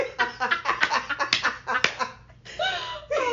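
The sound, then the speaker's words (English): A quick, uneven run of sharp, crisp hand claps fills the first two seconds, then gives way to voiced vocal sounds with rising and falling pitch. “Could you hear that clap?”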